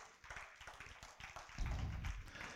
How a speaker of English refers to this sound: Thank you for the few that clapped.